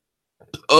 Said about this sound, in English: I burped.